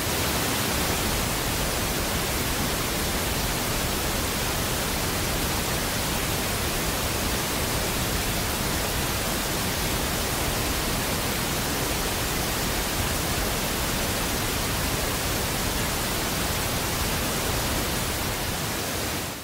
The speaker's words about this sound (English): let's take another 15 seconds here of just playing the pink noise at that level